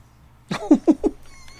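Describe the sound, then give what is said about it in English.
A fairly loud human voice imitates a cat's meow: a short, wavering, cat-like cry pulsing three times in quick succession, then quiet. “Meow, catty.”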